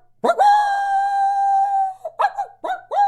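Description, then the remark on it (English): A person's voice mimics a coyote howl using hot pressurized air: one long, sustained wavering tone, followed by a few short rising yips at the end. “I don't care if you're elk bugling, a coyote howling, a turkey gobbling. It's that hot pressurized air. A coyote.”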